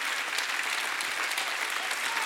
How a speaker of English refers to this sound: Let's all stand and give God a hand clap of praise. Can we do that? Come on, stand with me. Come on, somebody give him a hand clap of praise.